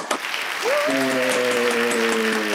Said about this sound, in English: Let's have a great round of applause for a fantastic presentation